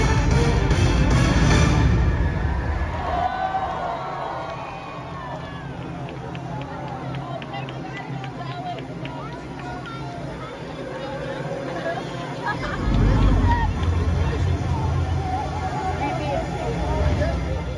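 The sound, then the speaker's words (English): Crowd noise at World of Color, a water show at D-Land where water is shot up into the air and light is reflected off it: a steady rush of spraying water under murmuring, chattering spectators, with louder swells of cheering at the start and again after about thirteen seconds. “Here's a quick video I took of a water show at D-Land called World of Color, which reflects light off water that is shot up in the air.”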